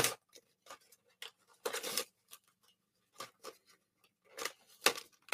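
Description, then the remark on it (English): Crinkling and ripping of paper card packaging being pulled off an 8-inch Albano MagDraft swimbait fishing lure, in several sharp bursts with one longer tear near the middle and quiet gaps between, no voices. “And then so like the 8-inch Albano MagDraft, take the giant plastic or the paper cards off, keep it a little smaller.”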